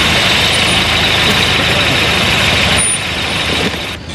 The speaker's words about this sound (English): That's a Pimp Car Jimmy has. The Jimmy Car.